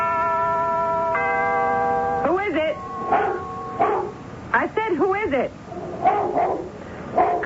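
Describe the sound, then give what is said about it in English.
A big black dog whines in a long, steady whimper, then breaks into several sharp barks in uneven bursts, mixed with more whimpering yelps between them. “Have you got a dog with you?”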